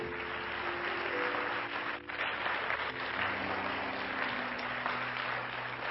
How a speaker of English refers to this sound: And why don't we just give all of the guests a hand clap?